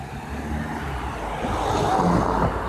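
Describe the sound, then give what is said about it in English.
A car goes by close at hand at the Eisteddfod in Wales, a broad rumbling engine and tyre noise that swells toward the end, heard outdoors with no one speaking. “There's a car passing.”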